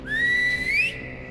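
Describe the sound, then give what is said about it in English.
A person gives one short, sharp whistle that climbs in pitch, a call summoning a group to deliver a bomb. It's fairly loud, with no talking, and it cuts off abruptly. “I whistle for a group of Aswang to deliver one of the bombs to me.”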